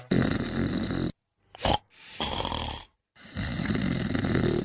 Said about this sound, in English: Snoring. It's not funny, and it's definitely not normal. It's actually a sign that you're not breathing properly while you sleep. And you're probably ruining your partner's sleep as well.